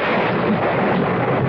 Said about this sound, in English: What's that? Sounds like thunder.